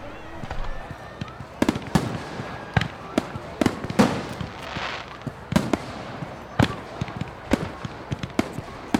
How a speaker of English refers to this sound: Fireworks are fucking lovely.